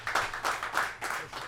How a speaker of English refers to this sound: I think the crowd deserves a clap.